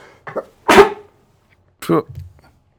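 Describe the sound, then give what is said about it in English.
A sharp, explosive sneeze preceded by a brief intake of breath, followed about a second later by another shorter burst of similar sound. “Bless you.”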